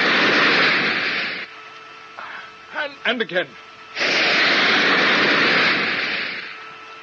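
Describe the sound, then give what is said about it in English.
Spaceship braking jets fire at nine-tenths maximum in two long, loud bursts of roaring hiss, each cutting off sharply; in the quiet gap between them a man speaks briefly. “I'm going to brake pretty hard.”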